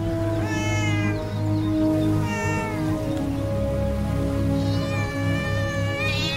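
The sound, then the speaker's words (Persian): A calico cat meows repeatedly in drawn-out, wavering cries, loud, with a steady low hum running underneath and no talking. “دیروز بود دنبال یک گربه گل باقالی کرد.”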